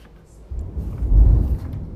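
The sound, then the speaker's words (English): A low rumble of thunder rolls in, swells to a deep peak, then slowly fades, heard alone with no voices, heard from a covered outdoor patio on a windy day before the rain starts. “I'm going to try to hear this thunder, man.”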